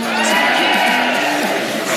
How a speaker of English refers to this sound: That's not bad. That's not bad. We're in the home of hurling, so we'll get another cheer for that, no? No? Okay.